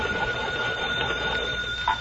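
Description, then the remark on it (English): A hand-cranked telephone bell, rung long by turning a little crank to call the operator, rings loudly and continuously for the whole two seconds, a sustained metallic jangle with a faint buzzing tone and no voices. “I want to hang up and then use this phone. Now, let's see. I turn this little crank here? Yes, ring it long and loud.”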